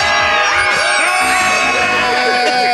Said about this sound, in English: Good screaming, everybody.